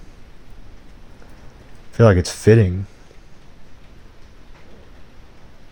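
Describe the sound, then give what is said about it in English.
Steady cold rain hisses softly throughout, an even wash of drops from outdoors, with a person briefly speaking over it midway before the rainfall continues alone. “I mean, it's rainy, but, and it's cold.”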